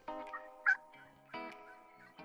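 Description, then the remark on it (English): A turkey gobble call rings out in rapid, rattling bursts, with a sharp high yelp partway through and a second rolling gobble after, fairly loud with no talking. “Then it's time to call the birds.”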